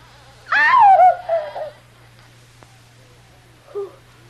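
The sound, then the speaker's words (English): A locked bedroom door creaks slowly open at night with a loud, drawn-out squeal that wavers and falls in pitch, then a faint click and a brief second squeak over a low background hum. “It's opening.”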